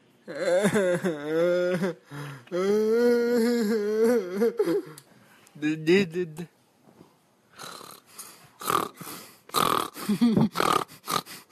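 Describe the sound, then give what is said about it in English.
A voice makes drawn-out, tonal vocal sounds in a call-and-response with an animal, then a run of about half a dozen harsh, breathy snorts follows in quick, uneven bursts, fairly loud and noisy. “Shall we do a call and response snort, perhaps?”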